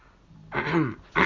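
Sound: throat clearing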